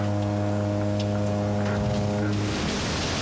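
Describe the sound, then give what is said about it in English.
A loud motorboat engine drones at a steady, buzzing pitch, then gives way to a rushing wash of water and spray as the boat roars past, with no talking. “I called a boat racing on this one.”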